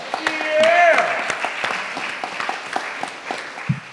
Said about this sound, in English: So I think we should give ourselves a round of applause. Woo! Yeah.